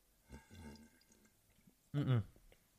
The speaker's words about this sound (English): Hold on, I gotta drink some water. I don't think I can get a good slurp in here.